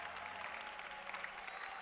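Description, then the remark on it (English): An audience claps their hands together in worship, a dense, steady wash of many overlapping claps that fills the whole moment, with no voices standing out. “As you clap, let the chains break in the name of Jesus.”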